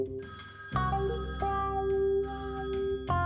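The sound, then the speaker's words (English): Several telephones ring at once, their electronic trills overlapping and restarting in staggered bursts, steady, with no one talking. “The phones were ringing night and day.”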